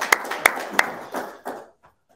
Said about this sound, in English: Thank you so much. Thank you. Give Denise a round of applause.